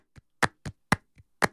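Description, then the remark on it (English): Six soft hand claps alone in a loose, uneven rhythm, with quieter claps alternating with louder, brighter ones and silence in between, used in a deep house track in place of a snare drum to give an African feel. “I do use these kinds of hand claps a lot in my production, especially when it calls for something of an African feel.”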